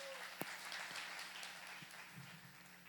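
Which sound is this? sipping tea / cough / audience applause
audience applause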